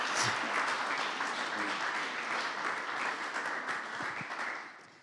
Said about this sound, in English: Can we just give her a round of applause? This is encouragement.